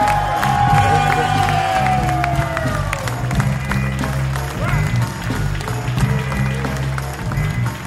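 A live crowd in Boston cheers and applauds loudly and continuously, with whoops and shouts rising over dense clapping throughout, plus a musical tone sliding at the start.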